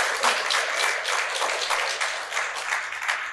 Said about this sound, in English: I give you permission to clap and bless God. You can do that.